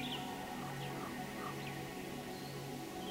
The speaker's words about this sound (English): I hear birds singing songs.